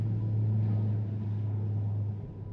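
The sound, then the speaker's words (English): An Australian National Airways DC-3 propeller airliner taking off from Archerfield Aerodrome in Brisbane, Australia, about 6:15 am on 22 January 1946, bound for Cairns. Its piston engines produce a steady, heavy droning roar with a deep low hum that holds loud and constant throughout, with no voices. “And an Australian National Airways DC-3 is lifting off from Brisbane's Archerfield Aerodrome.”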